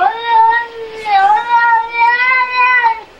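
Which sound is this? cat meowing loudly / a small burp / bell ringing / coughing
cat meowing loudly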